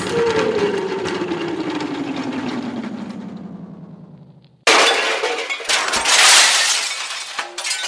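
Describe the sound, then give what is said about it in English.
A long descending whistling tone slides downward for several seconds, then cuts off into a sudden loud, clattering crash of breaking metal and shattering debris as a transmission tower, hit by a slingshot shot, falls down; the crash rumbles on to the end. “You broke me whole tower, you juvenile delinquent.”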